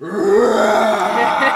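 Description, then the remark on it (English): A deep, guttural roar of a frost giant, a skeleton monster, rumbles loudly and steadily for about a second and a half, a rough growling bellow with no voices over it. “You hear the frost giant.”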